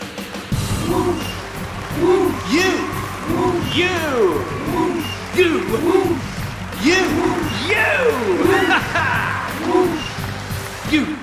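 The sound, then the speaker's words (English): An audience cheers and applauds, with many overlapping rising-and-falling whoops and hoots over a steady bed of crowd noise, sustained and fairly loud throughout. “You tornadoes deserve that round of applause.”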